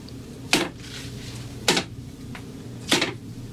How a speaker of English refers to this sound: Your majesty, pick up, I pray thee, the arrows that remain in thy quiver. Hold them in thy hand and beat them upon the floor.